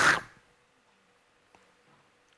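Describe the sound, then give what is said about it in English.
A voice imitates an earthquake with one short, loud, breathy rush of noise that fades within a fraction of a second, followed by near silence with a faint click. “I'm not sure that's what an earthquake sounds like, but that's the sound I gave it.”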